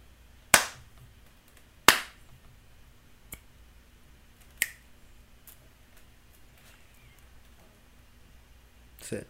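Two loud, sharp hand slaps ring out, followed by two quieter, crisp finger snaps and a few faint clicks, spaced irregularly over a low, steady background hum with no talking.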